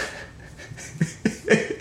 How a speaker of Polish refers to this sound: Jest ziewanie. Jest no, ziewanko, ale nie przejmujcie się, bo ziewanie to jest rzecz naturalna. Ja ziewam w chuj.